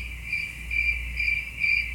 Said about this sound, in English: Ooh, crickets.